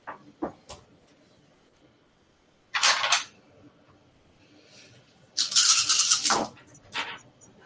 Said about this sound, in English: Who just rolled a handful of dice?